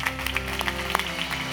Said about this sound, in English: Come on, give God a hand clap of praise in this place.